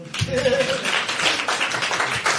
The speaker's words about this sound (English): But we're not clapping for me with the trick. We're clapping with him that he lifted a school bus. He lifted a school bus.